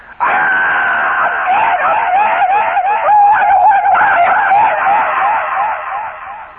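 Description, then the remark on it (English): A voice imitates a man's yell: one long, loud, wavering cry held for about six seconds, heard on its own with no talking over it. “And the people all around, you know, the next house, once in a while, they'd hear him yell.”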